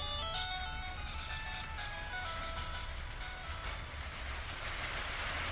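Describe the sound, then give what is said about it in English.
Rain begins pattering on the tin roof of a shed, a dense hiss that thickens toward the end, while a tinkling jingle-like melody plays over it early on. No one speaks. “Oh, it's starting to rain, listeners.”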